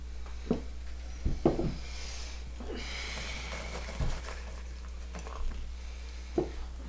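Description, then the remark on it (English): Cream soda being poured into two glasses, a soft hissing, fizzy stream that swells mid-clip, with a few light clinks and taps scattered throughout over a low steady hum. “you have been pouring that cream soda for 8 hours.”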